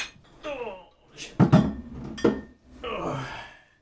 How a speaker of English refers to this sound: Beer pops.